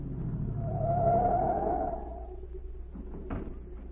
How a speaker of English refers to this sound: A minute later, a car pulled up at the watchman's gate, and Agent Z stepped out.